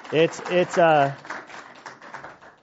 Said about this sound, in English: We can clap for him.